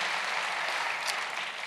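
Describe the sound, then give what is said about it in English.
An audience claps steadily, a dense, even wash of many hands at a fairly constant loudness, with no voices over it. “So I'm worthy of applause, worthy of applause.”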